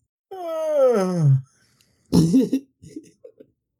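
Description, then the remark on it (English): A person lets out a drawn-out, exaggerated fake yawn, a voiced moan sliding downward in pitch for about a second, followed by a few brief vocal sounds and murmurs. “That's not even how you yawn”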